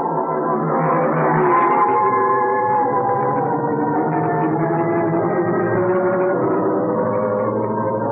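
The creaking door of the radio show The Creaking Door groans on for about eight seconds, a reverberant, low tonal moan with shifting overtones at steady loudness and no voices.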